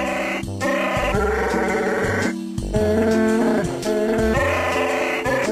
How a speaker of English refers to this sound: It does actually sound a bit like my cat. Sounds like it does. But you know what? I just see all of the trouble in the world, all of the strife, all of the miscommunication, all of the xenophobia, and I hear Chewbacca singing a Christmas carol